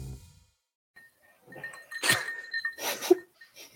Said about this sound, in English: Already clanking the glasses out here. I'm going to clank my water bottle. Hear that? Boo. Oh, it's pure crystal. Pure crystal.